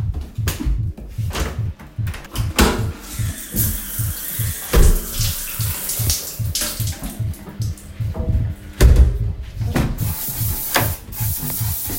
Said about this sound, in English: Shower, shower, shower, shower. Do you need a poo? No, shower.